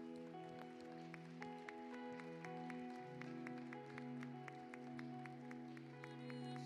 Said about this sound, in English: Come on, can you give Jesus a hand clap of praise in the house?